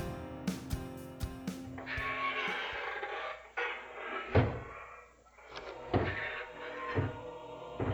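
A door creaks slowly open, a drawn-out grinding squeal mixed with several sharp wooden knocks and thumps, fairly loud, with no one talking.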